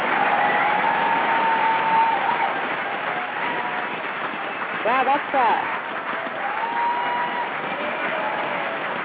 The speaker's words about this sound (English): Well, you get extra props tonight. You get this applause tonight.